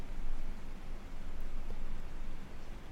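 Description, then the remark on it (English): Heavy rain pours down in a steady, dense hiss that fills the whole sound, swelling slightly at moments, with no voices over it. “And it is raining quite hard here, so using the noise on my end to strengthen your focus.”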